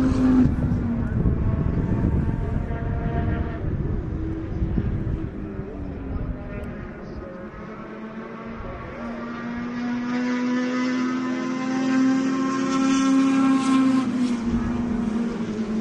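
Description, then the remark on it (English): High-pitched engines whine steadily, their tone sliding up and down as race cars scream past one after another, loud and continuous with no gaps. “Some of them just scream.”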